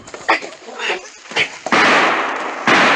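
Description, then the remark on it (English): Two sharp gunshots, fired by a woman during a struggle, crack out amid scuffling and thumping, followed by a loud, sustained rush of noise as the struggle continues. “Her shots were as wild as she was.”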